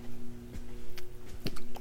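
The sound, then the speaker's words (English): Sipping from a drink: a few short, wet mouth clicks and slurps over a steady low hum, with no talking. “First sip, delicious.”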